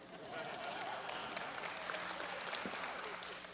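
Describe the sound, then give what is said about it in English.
An audience claps steadily, a dense, continuous patter of many hands at an even loudness throughout, with a faint murmur of voices underneath. “Keep clapping, I'll have a drink of coffee.”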